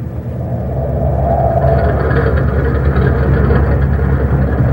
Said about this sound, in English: Listen. Listen to the turbines. They've got it wide open.